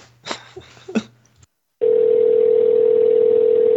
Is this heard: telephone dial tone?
yes